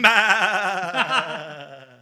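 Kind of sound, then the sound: animal, goat bleating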